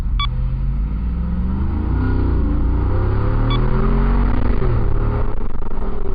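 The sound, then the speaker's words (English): A Jeep JL engine with an aftermarket MagnaFlow performance exhaust rumbles with a deep, throaty exhaust note, revving up and down in rising and falling sweeps over a steady low drone. “How can you pull up and hear that beautiful MagnaFlow exhaust and not...”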